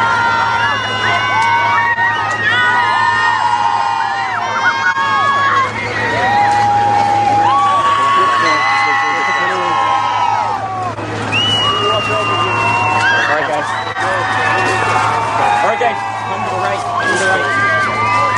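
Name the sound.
crowd screaming and cheering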